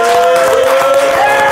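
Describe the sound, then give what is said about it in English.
Loud, dense crowd applause with rapid overlapping claps, joined by a sustained high-pitched cheer or whistle running steadily across the whole short burst. “Clapping so hard”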